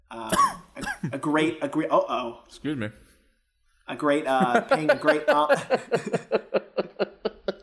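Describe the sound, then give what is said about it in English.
Someone clears their throat and coughs amid voiced, speech-like sounds, ending in a quick run of short, evenly spaced bursts, fairly loud. “Look, anytime I hear a cough, it's you gotta take it for what it's worth, man.”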